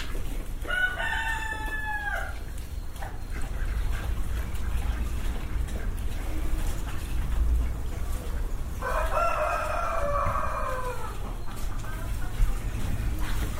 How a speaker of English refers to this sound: The cockerel's going crazy.